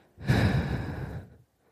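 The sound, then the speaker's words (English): A single long, heavy exhale, loud, breathy and noisy across the range for about a second before stopping abruptly. The breath is exaggerated and theatrical, with no talking. “The next one is breathing heavy.”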